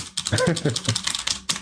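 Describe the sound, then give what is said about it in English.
Rapid, uneven clicking of short-travel keys on an Apple MacBook Pro laptop keyboard, fairly loud, with a brief murmur of a voice underneath during the first second. “For not traveling very far, the keys are very loud.”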